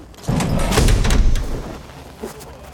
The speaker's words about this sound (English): So you should hear a pretty loud rush of air when they open this door.